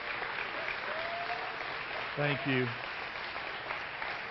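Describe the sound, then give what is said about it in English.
A round of applause for mothers on Mother's Day: steady, dense clapping from a crowd that carries on evenly the whole time, while a voice briefly speaks over it partway through. “Let's give moms a round of applause.”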